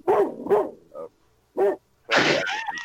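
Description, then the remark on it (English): A pet dog in the woods, with chickens walking about, barks loudly several times in quick, uneven bursts, ending in a longer, higher-pitched run of yelping barks. “Yeah, my dog is Kill the animal.”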